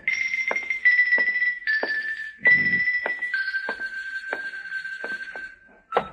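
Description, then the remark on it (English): Sharp knocks on a door land about a dozen times at uneven intervals, over a steady, high-pitched ringing tone that runs almost the whole time. A low thud sounds midway. “Come on, open up, will you? I got a message for you. Come on, answer the door.”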